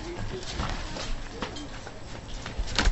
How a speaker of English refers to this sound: The door's locked!